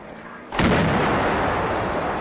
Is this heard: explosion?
yes